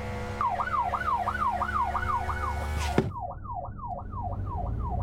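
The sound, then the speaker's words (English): A police car's siren, switched on while driving in traffic near Whitechapel Tube, wails in a rapid rising-and-falling cycle, loud, over a low engine-like rumble, with a sharp thud midway after which the siren carries on with less background noise. “Just put the old blues and twos on.”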